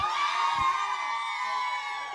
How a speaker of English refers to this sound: You guys give me powers when you cheer.